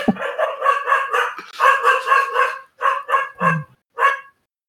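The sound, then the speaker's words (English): A male dog barks loudly, firing off a rapid run of harsh, drawn-out barks in quick bursts with brief pauses between, and no one speaking. “I don't know what my dog's barking at, but he's loud.”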